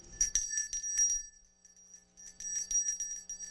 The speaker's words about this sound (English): today I have a special bell, and I'm going to ring it, and I'm going to see if you can think of a time where you maybe have heard this bell in the past. I'll give you a clue. You only hear this bell between Thanksgiving and Christmas.